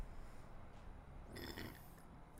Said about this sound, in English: I just burped. Well, why is everyone looking at me?